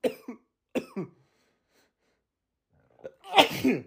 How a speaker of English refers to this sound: Bro, that impression made me cough, sneeze, and burp all in one. Here it comes again. Holy cow. Oh, man.